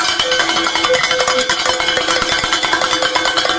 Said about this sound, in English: Am I allowed to ring the bell from the woman's hour? Is that okay?